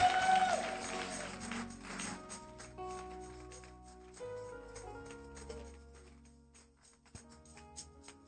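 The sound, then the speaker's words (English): A church audience claps to welcome a woman speaker, in a dense, scattered wash that is loudest at the start and gradually thins out, while sustained musical tones carry on underneath. “All right, church, help me welcome this woman of God. Amazing. Let me get your microphone for you. Are you clapping?”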